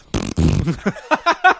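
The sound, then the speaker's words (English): A voice imitates a long, raspy farting noise in place of singing, a loud low blast that breaks into a string of shorter sputtering bursts. “except every time he sings, it's just a long, farty noise.”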